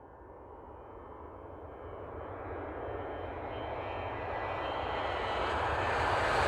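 An airplane engine roars in flight, a broad steady drone that swells gradually louder and brighter as the aircraft draws nearer, with no voices present.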